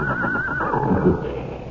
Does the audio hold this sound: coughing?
no